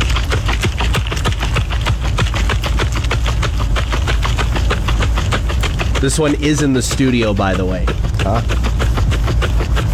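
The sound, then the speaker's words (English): A bottle of hand sanitizer is shaken for a sound-guessing game in a fast, steady rattle that runs the full length, with a person speaking briefly over it partway through. “That one is the sanitizer.”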